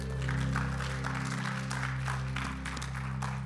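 An audience claps together in a dense, steady burst of applause that carries for several seconds over a sustained low hum of tones underneath.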